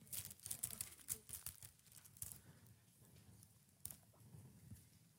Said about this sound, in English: Guys, to finish today's sermon, please turn to the left to Acts chapter 6. Don't you like the sound of that paper?